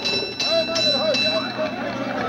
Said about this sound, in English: Listen. Going to a fire in 1826, a team of horses pulling the fire engine of the Norwich Union Boys Firehouse.